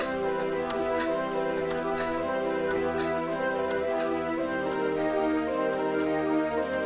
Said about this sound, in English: pretty dark in there, but you can see that there are just like every wall, every inch of the wall is a grandfather clock all the way around the room. And so this... just crazy ticking of all of these are happening.